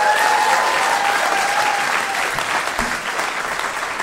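A live show audience, asked to answer by clapping, breaks into steady, loud applause, many hands clapping in a dense wash of sound that holds for several seconds without fading much, with a few faint cheers mixed in.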